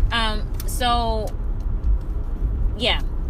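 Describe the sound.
A steady low rumble of road noise fills the inside of a moving car, continuous throughout, with a few short voiced sounds from a person rising briefly above it.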